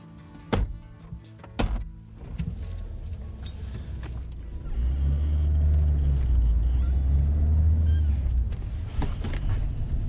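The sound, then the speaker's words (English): A few sharp clunks and a whirring window motor, then a car engine rises into a steady low rumble of driving, heard from inside the cabin with no one talking. “On the way in the car, we get chatting”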